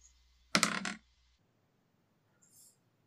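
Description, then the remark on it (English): A brief clatter of regular dice tumbling across a hard table, lasting about half a second, followed by near silence and one faint, light tick a moment later. “but this one I'm going to roll with just regular dice.”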